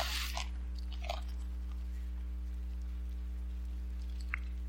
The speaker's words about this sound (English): You remember when I used to say I love to hear the pages turning? Now I hear clicks and pages turning and all sorts of other things.